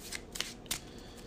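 A deck of cards being shuffled during a card game, everything except the Eureka card, with three short, crisp papery bursts of riffling spaced a fraction of a second apart, fairly quiet, with no talking.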